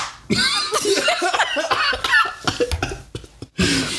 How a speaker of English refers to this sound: He was slapping his thigh, by the way.